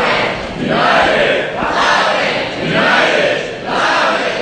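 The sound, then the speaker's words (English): A loud crowd cheers in unison, its roar rising and falling in steady rhythmic swells about once a second, a chanted cheer repeated several times: the first ever cheer for Loudoun's new professional soccer team, led by a county supervisor at an event. “And Supervisor … led the crowd in the first ever cheer for Loudoun's new professional soccer team.”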